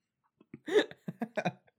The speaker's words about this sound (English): Whenever I'm hoping that the hiccups don't come.